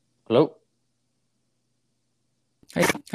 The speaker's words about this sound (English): Oh man, you sound like you're cutting off a little bit. Can you hear me?